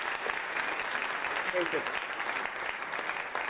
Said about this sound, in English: Hey, that would be that applause would mean more if it wasn't from a button.